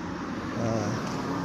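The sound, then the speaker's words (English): A car turning on a quiet road in a small village or town in the dark evening, in fairly good, damp weather. Its steady engine and tyre rumble swells slightly over a second and a half against broad outdoor noise. “There's a car turning, but it's okay, it's a car.”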